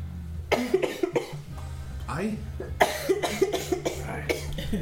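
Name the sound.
repeated coughing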